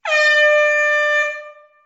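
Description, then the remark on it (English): A single loud, sustained blast of a DJ air horn sound effect, bright and brassy with a steady pitch, holding for over a second before cutting off with a short fading tail. “And in my show format, I usually do some sound effects, you know, some applause, maybe a DJ horn or something when somebody follows me, just as a way to say thanks.”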